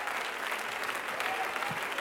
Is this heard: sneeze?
no